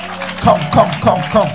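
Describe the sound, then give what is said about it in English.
A crowd claps for Jesus in a steady rhythm, about three beats per second, the claps fairly loud over a continuous background murmur of voices. “Can you clap for Jesus?”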